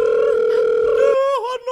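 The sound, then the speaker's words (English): A loud, steady telephone dial tone as a call is placed back hums at one pitch for about a second, then the line noise drops away and the tone wavers briefly before cutting off. “Maybe if we call back, he'll still be farting.”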